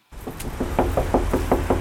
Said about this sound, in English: It's mid-morning on a weekday when there's a rap on Keisha Gibson's motel room door.